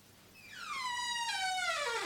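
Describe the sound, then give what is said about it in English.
A door hinge creaks in one long, drawn-out squeal that slides steadily downward in pitch, clear, with no voices over it. “I really must oil the hinges of this door.”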